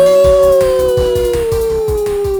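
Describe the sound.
A person imitates a wolf howl with a single long, loud, drawn-out tone that slowly sinks in pitch, over a steady thumping low beat.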